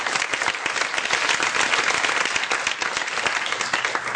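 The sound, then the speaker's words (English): An audience gives a hand clap on the table, a dense, even wash of many hands applauding at a sustained loudness for several seconds with no voices rising above it. “Give him a hand clap on the table.”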